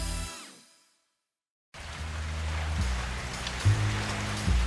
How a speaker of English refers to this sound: But tonight, it was pouring in Music Town. Water dripped onto my office floor from a leak in the ceiling.